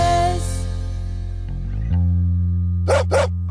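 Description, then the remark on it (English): A dog named Cheeky barks twice in quick succession, two short, sharp barks near the end, heard over a steady, sustained musical backing with no one talking. “why is Cheeky barking?”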